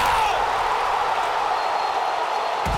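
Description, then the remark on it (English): A large esports arena crowd roars and cheers in a steady, dense wash of noise that holds at a constant loud level for about three seconds, with no single voice standing out. “Bro, the crowd reaction is fucking sick, by the way.”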